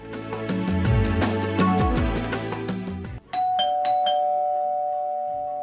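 An electronic doorbell at a family's house plays a quick, bright chiming melody for about three seconds as visitors arrive, then a few clear sustained notes ring out and slowly fade. No one speaks.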